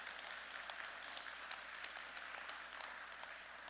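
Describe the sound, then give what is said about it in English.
A church audience claps steadily in praise during a sermon, a dense, even wash of many hands applauding together, sustained throughout with no speech over it. “Give him a clap offering for that.”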